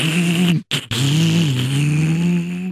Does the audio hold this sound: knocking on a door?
no